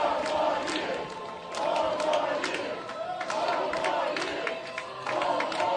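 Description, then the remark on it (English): A room full of Black Americans yells and chants "four more years" in unison, their voices rising and falling in a repeated rhythmic phrase, with scattered claps and cheers beneath the steady roar. “Well, now, there was a room full of African Americans, black Americans, yelling, chanting, 4 more years.”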